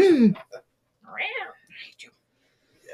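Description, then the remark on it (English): A couple of short, rising-and-falling meows from a cat, with a few soft breathy sounds between them and a voice at the start. “Kitty.”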